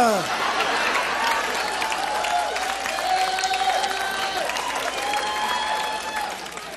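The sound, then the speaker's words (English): A large crowd bursts into sustained, dense applause lasting several seconds, while a man's loud, drawn-out yell of "yes" rises above the clapping near the middle. “Boy, I think I just realized that guy screaming yes with that huge round of applause, I think that might have been room H.”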